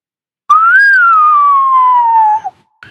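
A single sustained whistle, loud and close, rising briefly then sliding slowly downward in pitch over about two seconds before cutting off, followed by a faint short sound.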